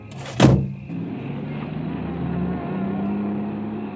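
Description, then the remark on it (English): A car arriving: its engine idles with a steady low rumble, the hum rising slightly in pitch, after a sharp loud thump near the start. No one speaks. “It was only about 30 minutes later, actually, that I heard another car.”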